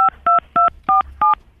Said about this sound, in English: Please stop punching the number on the phone. Don't punch any numbers on the phone. Use your mouth to tell me what it is. I don't want you to punch the numbers on the phone because I can't see what you're punching.